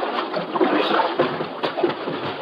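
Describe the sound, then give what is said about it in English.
A small boat pulling in to the shore at a clearing near a riverbank, water sloshing and lapping steadily against the hull with a few soft knocks and splashes, with no voices. “Yeah, let's pull in the shore here”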